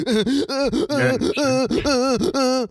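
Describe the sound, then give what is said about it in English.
A voice imitates sobbing cry breathing: about six quick, wavering, moaning gasps in a steady hiccuping rhythm, loud, with no words spoken. “I was doing cry breathing.”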